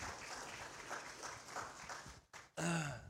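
An audience applauds with a dense, steady wash of clapping for a couple of seconds before it drops away, followed by a brief pause and then a loud, sustained voice.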